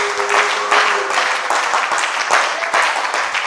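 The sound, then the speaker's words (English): An audience claps for the love of God, breaking into sustained, dense applause, many hands clapping at once in a loud, continuous wash, with a faint tone or voice briefly underneath. “Why don't you clap for the love of God?”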